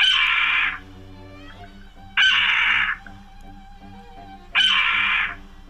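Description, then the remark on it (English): A Steller's jay (Cyanocitta stelleri) mimics a red-tailed hawk's scream three times, each a loud, raspy, descending cry lasting under a second, separated by quiet pauses of about two seconds. “Here's a stellar interpretation of a red-tailed hawk.”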